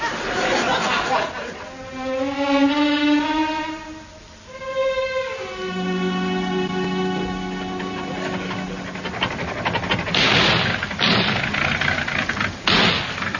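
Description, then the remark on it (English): A car recently fitted with a new engine revs upward, then settles into a steady running drone for several seconds before rougher, noisier bursts take over near the end. It's fairly loud, with no one speaking. “Car's going better since we had the new engine put in.”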